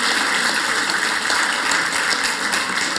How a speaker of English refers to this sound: I also want to thank the kids. Can we just give the kids another round of applause? That was fantastic.